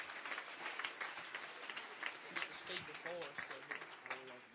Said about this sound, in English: Why don't we give this church, again, a hand clap. Thank them for everything they do.